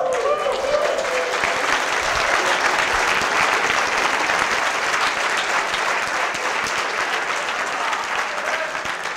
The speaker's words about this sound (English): Please join me on stage, my friends. Give him a round of applause.